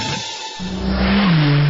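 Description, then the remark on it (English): A car engine revs hard and loud, its pitch climbing then settling into a steady high drone as the speeding vehicle passes by, with no one talking. “Hey, slow down, buddy. This ain't Talladega, and that race car driver's number on your back window, you ain't him.”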